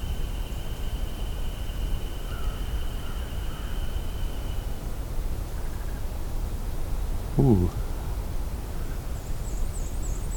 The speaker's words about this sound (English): It was a really croaky call from either a common raven or an American crow. If I were to guess, It was a raven. But I have heard crows make strange sounds like that before.